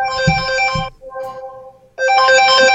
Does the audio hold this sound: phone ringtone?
yes